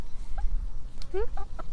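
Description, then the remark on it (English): Chickens cluck in a few short, scattered bursts, one a longer rising squawk, over a low background rumble. “Yeah, that's right, chicken. You tell them. I don't know if you can hear them.”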